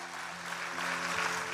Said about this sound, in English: True North, come on, clap for everybody that said that. Come on, really encourage them this morning.